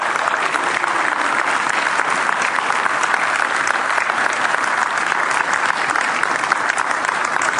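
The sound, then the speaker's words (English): Sustained, steady applause from a large audience at First Alliance Church for the new senior pastor preaching for the first time: a dense, loud patter of many hands clapping without pause for several seconds, with no voices rising above it. “I appreciate the applaud, but let me remind you that this is not about me.”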